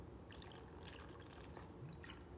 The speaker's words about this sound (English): Who's exhausted? I need a drink of water. I'm exhausted.